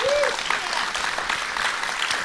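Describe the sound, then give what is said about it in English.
An audience applauds steadily, a dense wash of clapping, with a brief whistle-like tone near the start and no speech. “I was afraid they weren't going to applaud.”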